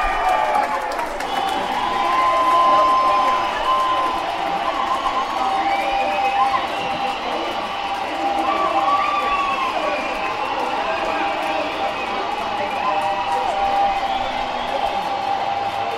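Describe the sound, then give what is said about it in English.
A large football crowd at the New Power Lane stadium roars in celebration of a goal, a loud sustained wall of cheering and shouting that holds steady throughout, with scattered whoops and whistles rising above the din. “We've got the first goal at the New Power Lane stadium.”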